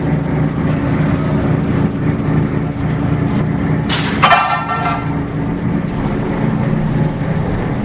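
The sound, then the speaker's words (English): A lifeboat's engine drones steadily and loudly throughout as it is launched down the slip and heads out to sea for a 3-hour navigational exercise with 7 crew on board, with a brief bright splash or rushing burst of water midway as the vessel moves off, over constant low rumble and wind. “She's on her way out now for her 3-hour navigational exercise with 7 crew on board.”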